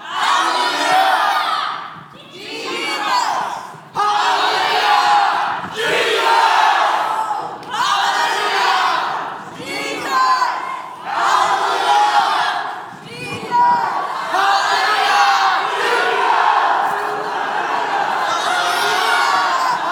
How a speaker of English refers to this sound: Are we ready? Are we ready? We are going to shout on top of our heads, Hallelujah. And Jesus, a disciple shouts more louder, I'm going to give you a gift. Hallelujah. 1, 2, 3, we go.